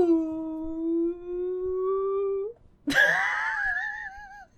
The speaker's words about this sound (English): Ooh. That was a baby whale.